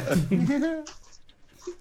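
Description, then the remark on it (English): A dog whimpers with a rising, whiny cry, followed by a few short breathy huffs that sound like excited panting. “His dog's going nuts.”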